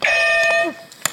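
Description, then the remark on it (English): A loud electronic quiz buzzer, being tested before a quiz game, sounds once, a bright harmonic-rich tone held for over half a second before it cuts off, followed by a short sharp click. “So let's test our buzzers.”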